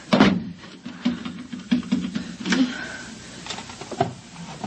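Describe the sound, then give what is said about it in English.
A chair scrapes and thumps as it is jammed under a door handle, with a brief squeak of wood and a few knocks and rattles, no voices. “Shoving a chair under the doorknob.”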